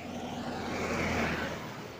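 A car drives past, its steady road rumble and tire hiss swelling to a peak midway and then easing off again. No one speaks.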